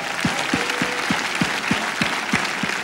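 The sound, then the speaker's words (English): An audience claps together during a church service in a steady, even rhythm, roughly three beats per second, over a dense wash of crowd clapping and noise. The clapping stays loud and continuous throughout. “So God's word says you should clap”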